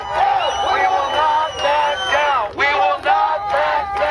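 A protest crowd gathered at Disney's Mickey Mouse Gateway sign cheers and shouts together in loud, sustained bursts, many voices overlapping into rhythmic, chant-like waves of protest chants with brief dips between phrases.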